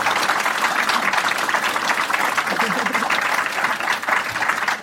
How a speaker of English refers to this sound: So thank you very much to our four authors today. Big round of applause for them, please.